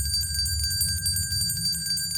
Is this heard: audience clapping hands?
no